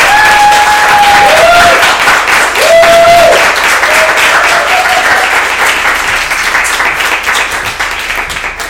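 An audience at a debate applauds to vote for the absent Elizabeth Gomez as the debate's victor, in a dense, steady wash of clapping that holds for several seconds, with a few short, bright whistles rising over it early on before it gradually thins out.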